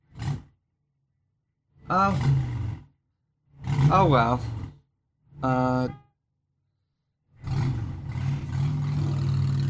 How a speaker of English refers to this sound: There is a motorcycle outside.